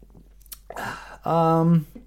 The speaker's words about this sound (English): Well, let me take a sip of Diet Dr. Pepper for this one.